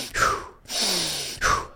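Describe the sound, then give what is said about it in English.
Deliberate, rapid deep breathing for about 5 seconds as a character steadies himself: a sharp inhale, a long forceful exhale, then another quick gasping inhale, loud and breathy with no talking. “He takes about 5 seconds of Him Wof. Uh-huh. Breathing.”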